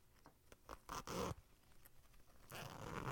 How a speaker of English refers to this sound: That's a zipper. Yeah, but like, what's the object? Is it like a backpack zipper? It is a backpack zipper.